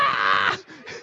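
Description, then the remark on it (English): A voice imitates a woman's loud, shrill, blood-curdling scream as she is loaded onto a roller coaster, holding it for about half a second before breaking into two shorter, fainter strained cries. “She screams blood-curdling scream.”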